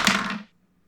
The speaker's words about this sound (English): So let's go ahead. Let's roll our dice for initiative and give three dynamic encounters towards the build up and breaking down of Lachlan's Lot. Let's roll the dice here.